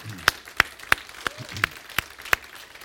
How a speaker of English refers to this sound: Give the Lord another big clap.